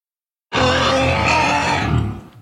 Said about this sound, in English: A lifetime of working with wild creatures has taught her the hard way what an injured animal sounds like